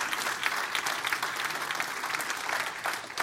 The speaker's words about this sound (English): Go ahead, come on, you clap better than that.